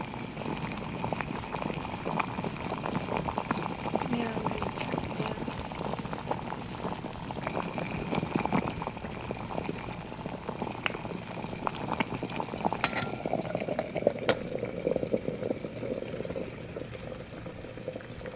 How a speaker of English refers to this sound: It looks like this water's about to boil.